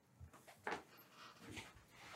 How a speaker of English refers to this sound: the dog next door is having an absolute episode.